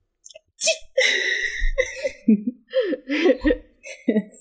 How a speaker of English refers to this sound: It is kind of funny because every time you punch it, a little bit of poison powder comes out until it just stops. Throw in a few of those adorable sneezes.